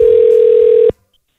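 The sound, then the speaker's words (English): A steady, loud telephone tone of an outgoing call holds one unbroken pitch for just under a second, then cuts off abruptly into silence. “Here's my call to Colin.”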